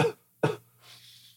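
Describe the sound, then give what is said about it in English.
A person imitates a dry cough with two short, sharp bursts about half a second apart, followed by a faint breathy exhale. Fairly loud, with no talking. “He's like, I have a slight cough, dry cough. It's not even coughing stuff up.”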